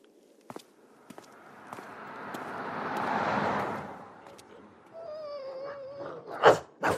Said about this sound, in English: And that must be goodbye in dog. See, you do speak dog.